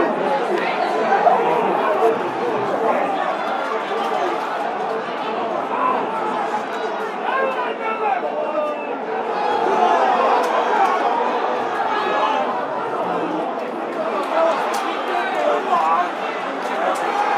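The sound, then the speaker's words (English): A large racecourse crowd at Cheltenham on day three of the meeting, ten minutes before the first race, murmurs and chatters continuously, many overlapping voices blending into a steady, fairly loud wash of noise that never drops away, with no single voice standing out. “I'll be back shortly, as you can hear the roar of the Cheltenham crowd on day three.”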